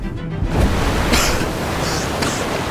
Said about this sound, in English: An enormous wave swept over the canoe. I was blinded by water. Half our supplies whooshed into the river.